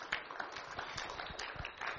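Steady applause from a church audience for the church's leadership, a dense, continuous patter of many hands clapping at once, fairly soft and unbroken for the whole couple of seconds, with no voices standing out.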